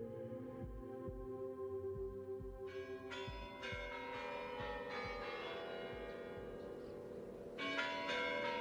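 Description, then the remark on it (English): Large church bells in Red Square, Moscow, toll loudly at 10 o'clock in a series of overlapping strikes, each ringing out and lingering in a deep resonant hum, with the peals growing fuller partway through. No one speaks. “The bells begin to toll at 10 o'clock.”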